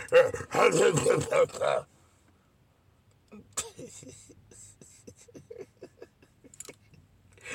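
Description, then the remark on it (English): A crowd of people loudly barks like dogs in a burst of overlapping voices, then falls quiet before scattered short, softer yips and calls follow in a loose rhythm. “They Q dogs. They got to be dogs. They had y'all barking there.”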